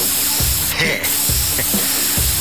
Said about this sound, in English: Look, here's an aerosol can. Watch this.